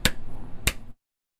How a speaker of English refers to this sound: I think my unit of measure is going to be... claps in a microphone.